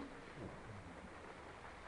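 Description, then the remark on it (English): A soft, steady hiss of rain falling outside in Washington, heard faintly and evenly throughout with no voices and no distinct drops standing out. “I can hear the rain.”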